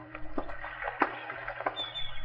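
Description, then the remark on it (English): Dockside ambience at the boat slips of Schooner's Landing around 4:30 in the afternoon: a steady low motor hum under gentle water sloshing, with a few hollow wooden knocks as boats bump in their slips. No one speaks. “It was about 4:30 in the afternoon when I arrived at Schooner's Landing. The old man was walking up from the slips.”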